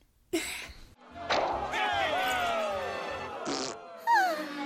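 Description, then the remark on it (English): A 6-year-old child blows a long, wet, buzzing raspberry to imitate the farting noise from a show. The sputtering lasts a couple of seconds, bracketed by short breathy bursts, fairly loud. “I liked when it made the farting noise. The farting noise? Remember, it went like.”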